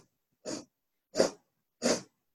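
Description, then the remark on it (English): A person inhaling through the nose in equal parts as a breathing exercise: short, sharp nasal sniffs in a steady, evenly spaced rhythm, three clearly audible, moderately loud, with silence between them and no talking. “So inhale 4 equal parts,”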